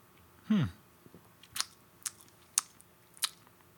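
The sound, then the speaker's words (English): A quick slurping sip of a New England IPA beer, followed by a few soft, scattered lip smacks and mouth clicks, otherwise quiet. “So let's have another sip.”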